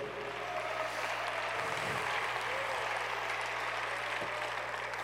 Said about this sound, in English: Way up in the mezzanine, why don't you clap your hands? I don't want to lose that church up there today.